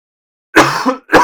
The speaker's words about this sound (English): There's a cough to edit out.